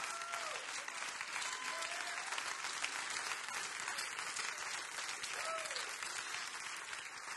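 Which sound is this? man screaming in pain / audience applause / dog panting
audience applause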